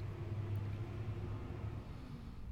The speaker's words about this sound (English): This is our 5 o'clock traffic passing us by.